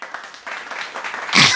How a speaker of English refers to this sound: Nice little round of applause.